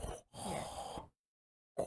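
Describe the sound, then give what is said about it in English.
A voice imitates Darth Vader's heavy, rasping mechanical mask breathing: a short breath, a pause, then a longer drawn-out breath, fairly loud, followed by silence and the start of another breath. “Sounds like you snoring.”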